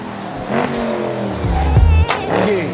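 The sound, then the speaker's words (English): A loud souped-up Mazda car engine revs and accelerates hard, its pitch climbing and shifting through gears, with a brief tire-like squeal mixed into the roaring engine noise. “That is a souped up Mazda. That is so fast.”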